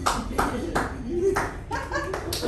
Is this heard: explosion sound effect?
no